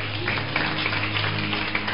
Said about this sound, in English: Let's clap for her quickly.